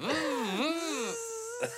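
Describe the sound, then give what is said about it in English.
A single voice makes a sustained, buzzing drone, its pitch swooping down and up before settling into a steady hum, with a short sharp burst near the end. “how would you do the voice or the noise? Just the buzzing sound.”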